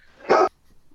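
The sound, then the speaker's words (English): A single sharp dog bark, loud, bursting out briefly before a quiet background. “Ooh, rogue dog.”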